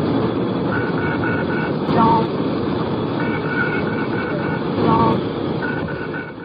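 An aircraft cockpit stall warning alarm beeps in repeated pulses just after the plane lifts off on takeoff, over a loud, steady roar of engine and cockpit noise, continuing throughout.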